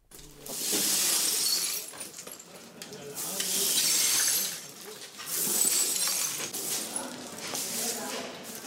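Broom strokes push debris and broken glass across a hard floor in Beirut during the cleanup after the explosion at the city's port, in three long, loud scraping sweeps, with bright tinkling shards and gritty rustling between them.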